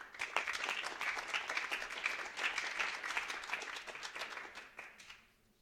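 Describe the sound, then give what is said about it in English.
An audience at Lake Forest breaks into a round of applause welcoming author Eric Charles May to read, a dense, steady wash of many hands clapping for about five seconds before quickly tapering off into quiet. “Let's have a round of applause for Eric Charles May.”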